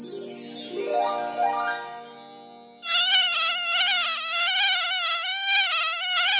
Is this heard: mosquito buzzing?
yes